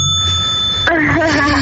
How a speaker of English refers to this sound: I'm gonna ring the bell.